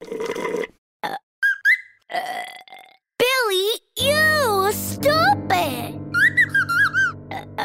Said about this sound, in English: Not funny. Burping is gross. Lingo Kids listeners, everyone burps sometimes.